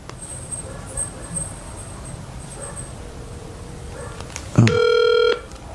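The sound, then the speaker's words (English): A quiet stretch of faint background hiss, then a single loud, steady electronic ringback tone near the end as a phone call to a friend rings, waiting for someone to answer. “Let's see if he answers.”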